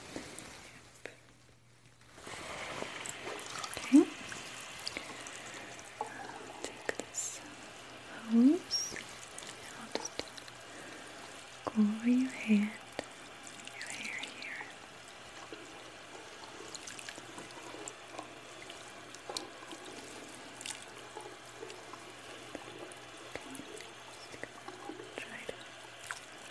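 Soft, steady running water pours and trickles over a person's hair during a hair wash with shampoo for the whole stretch, with a faint low hum underneath and a few brief quiet murmurs or splashes breaking in.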